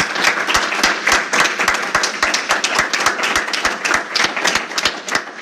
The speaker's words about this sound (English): Can we get one more round of applause for all of our authors?